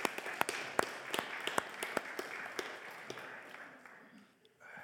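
An audience applauds in encouragement, a crowd of hands clapping with sharp, irregular overlapping claps that thin out and fade toward the end.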